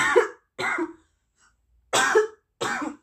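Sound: cough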